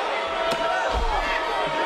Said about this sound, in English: So, whoa! Stratton with a steel chair, dropping Lynch.